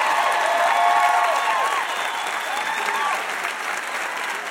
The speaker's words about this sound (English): Another huge round of applause for our VIP, Barney Frank.